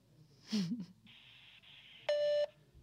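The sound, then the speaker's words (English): A single steady electronic beep from a phone's voicemail, loud and clean, lasting about a third of a second, marking when to leave a message. A brief muffled voice and faint hiss come before it. “It did the beep.”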